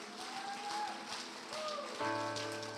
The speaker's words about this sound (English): Oh, clap your hands and praise him before you're seated.